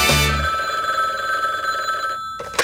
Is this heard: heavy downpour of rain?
no